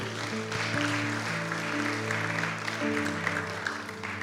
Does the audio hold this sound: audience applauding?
yes